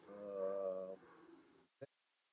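A dog gives a drawn-out, nasal snorting sound lasting about a second, then rougher breathy noise trails off before a single short snuffle ends it.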